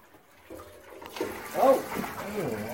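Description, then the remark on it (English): Water pours from a bucket into a trough, a rushing splash that starts after a brief quiet moment and keeps gushing steadily to the end, with a faint voice murmuring underneath. “Now, I've got a bucket of water here. I'm going to pour it into here.”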